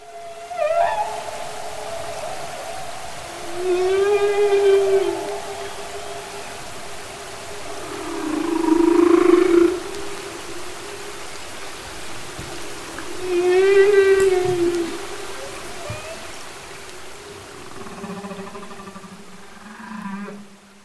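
Underwater whale calls in a quiet ocean rise and fall in long, moaning tones with harmonic overtones, repeating about every five seconds over a steady low hum and faint background hiss. No one speaks.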